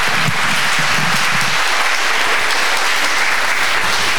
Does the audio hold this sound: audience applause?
yes